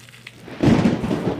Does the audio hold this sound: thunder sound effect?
yes